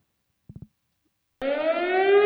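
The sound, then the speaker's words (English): After three quick low blips, a civil defense air raid siren kicks in loudly and begins winding up, its rich, buzzy wail climbing steadily in pitch with no one speaking. “That's how you tell people there's going to be a tornado or a bombing from the air in like 40s Germany.”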